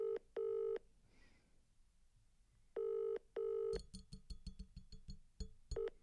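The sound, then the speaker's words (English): A phone ringback tone heard over a speakerphone, sounding in paired bursts with pauses between, fairly loud, followed by scattered clicks and handling rattles before the ringing starts again. “Let's put him on speaker and see what he says.”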